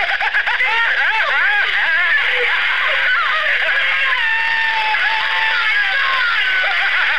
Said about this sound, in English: Blind terror, Michael started running madly through the field, the tall weeds whipping his face as he tried to block out the sounds of Linda's screams.